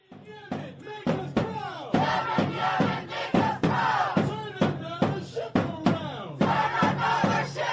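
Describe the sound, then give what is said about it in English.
A loud crowd chanting in the streets of New York, in Times Square, after US strikes on the Houthi rebels, many voices shouting together in a steady rhythm, punctuated by sharp, regular beats like claps or drum hits throughout. “These are the chants in New York streets after we hit back the Houthi rebels”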